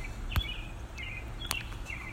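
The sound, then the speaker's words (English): Light morning birdsong with a few brief chirps and trills drifting over a steady low outdoor hum, plus a couple of sharp clicks; no one speaks. “The bird song is really quite striking this morning.”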